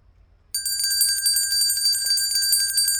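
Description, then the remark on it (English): After a moment of quiet, a small silver bell starts jingling abruptly and keeps shaking steadily for a few seconds, bright and ringing, fairly loud, with no voices. “Aye, we're on the banks and this young fella threw something down to us. A bell.”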